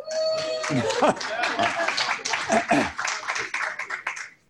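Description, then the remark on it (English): A lone person claps for about four seconds, a quick, slightly uneven run of sharp claps, while murmuring voices and a bit of laughter carry on underneath before it stops. “And sometimes I think, thank you for the applause from one person.”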